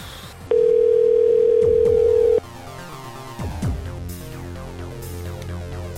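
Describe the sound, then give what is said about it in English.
A single loud, steady ringback tone from an outgoing phone call to the Woods Carlton Half Moon Bay sounds for about two seconds, then cuts off, leaving a quieter, busy background with faint tonal sounds. “Thank you for calling Woods Carlton Half Moon Bay.”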